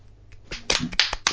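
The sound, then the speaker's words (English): Someone slaps their own face, a quick run of four or five sharp, crisp smacks in an uneven rhythm, growing louder toward the end with no voices. “I slapped myself in the face because I didn't know what you meant.”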